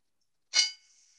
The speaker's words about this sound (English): Yeah, we heard that one. That one's pretty quiet. The buzzer's quiet, but we can tell it's buzzing. It's fine. The buzzer's quiet. I barely hear it, but the other one was really loud.